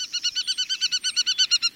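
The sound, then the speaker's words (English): An aplomado falcon, alighting after chasing sparrows, gives a rapid, steady series of sharp, harsh kek notes, about a dozen in quick succession, loud with no voices and a quiet background. “This time, the sparrows escape, and their pursuer, an aplomado falcon, alights to survey the landscape.”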